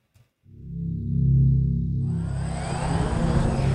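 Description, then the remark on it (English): A drone sound effect: a low, steady electric buzz fades in and holds, loud, then a rushing, hissy whir swells in over it for the second half. No one speaks. “Now we have our drone sound effect.”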